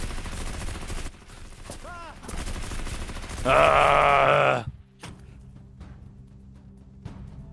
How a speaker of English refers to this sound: Tense dramatic music as gunshots boom.